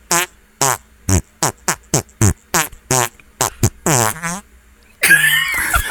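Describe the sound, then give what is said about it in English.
A video game death sound effect: roughly a dozen short, buzzy, fart-like blasts in quick uneven succession, some pitched, ending in a loud burst of harsh, crackling noise. “And then sometimes in the video game, if you die, it would go.”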